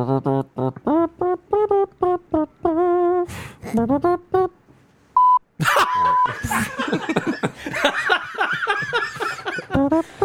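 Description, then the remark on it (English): Amid bursts of loud laughter, a single short, pure censor bleep tone rings out clearly in a brief gap, followed by more raucous laughing and chatter. “So when the beep came, I lost my fucking mind.”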